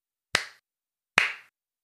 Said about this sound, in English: Yeah, no, we're going to just do some sync claps, and we'll use your iPhone video and audio then.